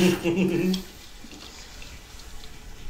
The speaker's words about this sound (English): So you continue to hear the water kind of flowing a little bit of wind blowing and that.